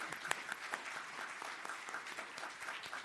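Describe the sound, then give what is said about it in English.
A church audience applauds a man steadily during a service, many hands clapping together in a dense, continuous patter at moderate volume, with a few sharper claps standing out and no speech. “They clapped for him in the first service, so we're going to”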